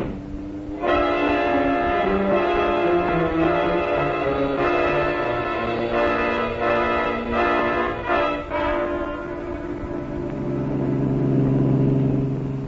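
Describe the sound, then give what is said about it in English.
A loud car engine roars and revs continuously, its pitch climbing and dropping as it accelerates hard, with no voices, as FBI special agents' car chases another car in close pursuit. “pull up as close to that car as you can.”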